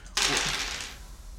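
Orange dice clatter across a tabletop in one quick rattling burst that tumbles for under a second and quickly settles, with no voices.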